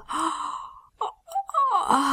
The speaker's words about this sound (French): Et Jésus bâilla.